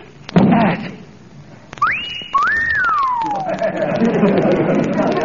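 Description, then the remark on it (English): A synthetic wolf whistle from a strength-tester game, sounding after a hit to show the score: a quick rising tone that holds, then a second swooping up and sliding down, loud over a thump and background crowd chatter. “A wolf whistle.”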